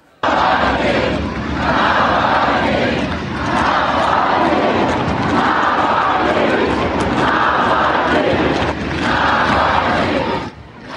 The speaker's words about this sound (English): But mostly, they just chanted Navalny's name over and over, as in this footage posted by Navalny allies from a rooftop overlooking the crowds.